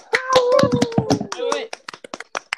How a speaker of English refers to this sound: Wait, guys, we can clap.